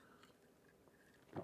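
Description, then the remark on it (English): A single short sip of coffee, a brief wet slurp near the end after a stretch of quiet room tone. “I'm going to have a quick sip of my coffee.”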